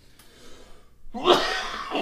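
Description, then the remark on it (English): A single sudden, forceful sneeze bursts out after a second of near silence, loud, trailing into a breathy, noisy tail. “Bless you.”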